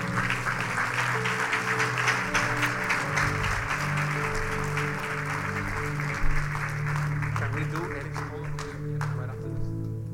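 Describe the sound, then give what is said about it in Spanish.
An audience applauds loudly for the Lord, a dense, steady wash of clapping lasting about nine seconds before thinning out, with sustained musical tones and some voices underneath. “Podemos dar un aplauso fuerte al Señor.”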